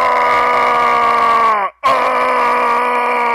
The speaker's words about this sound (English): And that's what you'll hear. I've never done that. I've got a couple of combos, but how many times in a row do you have to hit it for him to just scream like that?